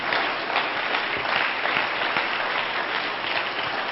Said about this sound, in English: And we are so glad that you've chose First Pentecostal Church in Silsbee, Texas to come be with us. Why don't the church family give our guests a hand clap today?